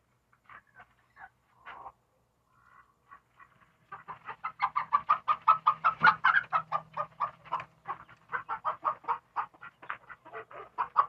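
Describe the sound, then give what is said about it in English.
Chickens cluck in a steady, busy chorus while being put away, starting with a few scattered clucks before building into a dense run of rapid, overlapping calls from several birds. “Putting the birds away.”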